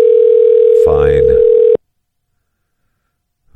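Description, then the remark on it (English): A phone call to the Crow's Nest rings out with one steady, mid-pitched ringback tone lasting under two seconds while a voice briefly talks over it, then silence follows with no answer. “They're not going to answer.”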